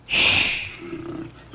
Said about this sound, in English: Soldiers are looking for Crockett, but he's in the bushes with a growling bear.